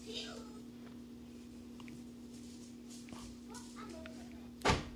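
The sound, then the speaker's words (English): A door slams once near the end, a single sharp, loud bang that cuts through a steady low electrical hum and faint scattered background noises. “Can y'all stop slamming the door, please?”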